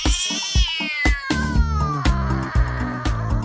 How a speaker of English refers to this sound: Meow, meow, meow. Meow, meow, meow. Meow, meow, meow.